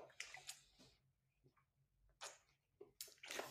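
Someone drinks water during a quick break, with a few soft, wet sips and swallows separated by short quiet pauses; no one speaks.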